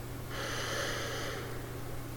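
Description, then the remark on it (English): A single slow, deep breath drawn in through the nose while the belly pushes out, a steady airy hiss lasting about a second, fairly quiet, with no talking. “Now this time, I want you to take a slow, deep breath in through your nose, but as you do it, I want you to make sure your belly pushes out, so the hand on your belly should go out as you're breathing in.”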